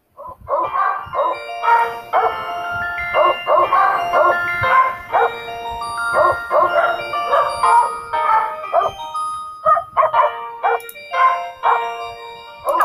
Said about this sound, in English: And that came from a group of lab puppies. That version of Happy Birthday happens to be my sweet schnoodle Doritos' favorite version.